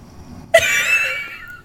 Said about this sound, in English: snores through the pod